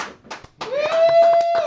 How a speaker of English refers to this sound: Everyone should be cheering right now. Everybody clap.